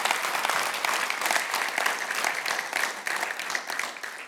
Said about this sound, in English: And they actually deserve just a round of applause for leading us so well.